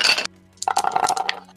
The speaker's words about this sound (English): I get to roll dice for these eels.